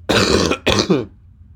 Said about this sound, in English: Excuse me, I have a bit of a cough.